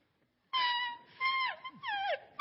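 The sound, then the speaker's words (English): A coyote call from a game caller: three loud, high, whining cries in quick succession, each holding a steady pitch before sliding downward, with no talking over them. “Should you need to call out a coyote? Yeah, that is a coyote call.”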